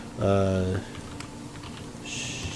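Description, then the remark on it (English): Soft, scattered clicks of typing the words "splint mail" on a computer keyboard, a handful of light keystrokes at an irregular pace, following a brief voiced sound at the start. “I was typing splint mail.”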